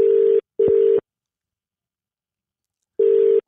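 Ringback tone on an outgoing phone call to a publican: a steady mid-pitched electronic tone in a quick double burst, a long pause, then the next burst begins. No one talks.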